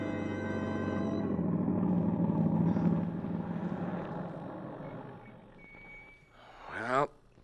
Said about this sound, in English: Tom Stevens and Helen Benson drive up to the boarding house after their picnic, quite unaware of the dark squad car parked at the curb a few feet ahead.